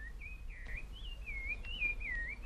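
A calandria mockingbird in Argentina sings a continuous, warbling run of whistled phrases that slide up and down, fairly clear, over a steady low hum of bees in the background.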